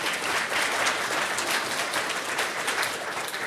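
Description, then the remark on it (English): A crowd claps steadily in a sustained burst of applause for President Napolitano at the Goldman School of Public Policy before a Q&A, many hands overlapping into a dense, bright patter at even loudness throughout, with no voices standing out. “Can we get a round of applause for President Napolitano?”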